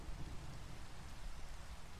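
Steady, hissing rainfall pours without a break, fairly quiet overall, with a deep low rumble of thunder rolling through underneath. No one speaks.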